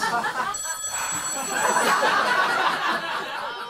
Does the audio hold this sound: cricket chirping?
no